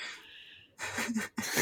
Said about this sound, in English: This guy's yawning for anybody wondering where the response is.